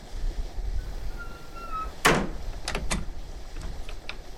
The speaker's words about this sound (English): Oh, is that balcony door ajar? Close there, will you?